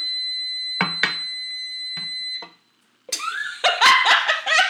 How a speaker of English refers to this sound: What was that? It was a timer. I forgot to turn it off. Is it going to go off again? No. Okay. If it does, I'll get up and do it.